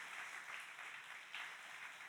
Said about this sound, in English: ¿Por qué no le das un fuerte aplauso al Go Señor? Ahead and give the Lord a strong round of applause.